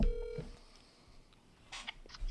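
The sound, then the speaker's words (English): A short steady phone tone cuts off, then after a pause a few quick electronic dialing beeps sound, thin and boxy from a phone on speakerphone held up to the microphone as a call is placed, with no one talking. “Just make sure to put it on speaker and hold your phone up to the mic.”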